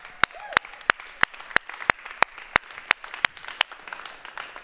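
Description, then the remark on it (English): Applause in the form of slow, steady clapping: about a dozen sharp, crisp claps at an even, deliberate pace, over a faint background hum. “You know what? I want to applaud the boomers.”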